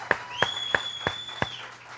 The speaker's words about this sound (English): Praise God this morning, amen. Somebody give the ladies and gentlemen that are singing for us this morning a big round of applause.